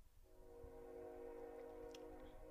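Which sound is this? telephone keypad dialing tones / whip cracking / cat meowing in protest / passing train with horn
passing train with horn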